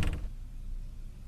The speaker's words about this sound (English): When I fumble for my keys to get into my apartment, I feel like I've been walking for ages, lifetimes to get here. I lean against the door just to open it.